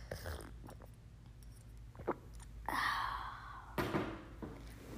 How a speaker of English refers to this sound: Give me a second, I'm sipping my coffee.